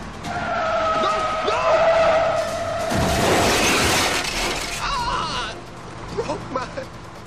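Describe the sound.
A Jaguar car's tires screech in a long, loud skid as it chases a bus, followed by a sharp crunching crash with shattering debris, then a brief stretch of engine noise and muffled voices.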